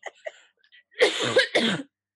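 Two harsh, loud coughs in quick succession, preceded by a few faint breathy sounds; no talking.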